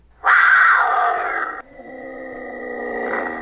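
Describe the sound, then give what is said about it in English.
A person imitates a mountain lion, letting out a loud, raspy roar for over a second, then trailing off into a quieter, drawn-out growling tone that carries on to the end. “Every step you take, every move you make, I'm the mountain lion.”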